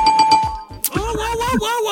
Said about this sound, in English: Bell tells me it's the end of that round.